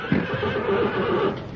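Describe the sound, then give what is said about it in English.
A small circus horse whinnies, a wavering, harmonic neigh lasting over a second, ending with a short snort or huff. “You're sure a grand little horse.”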